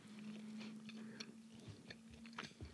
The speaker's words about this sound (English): Sorry if you hate the sound of me chewing food and talking with food in my mouth, but that's just the reality of it.